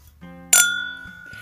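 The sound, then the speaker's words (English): A single bright clink of glasses of bourbon touching in a toast, followed by a clear ringing tone that lingers and slowly fades, fairly loud with no voices. “Cheers to you.”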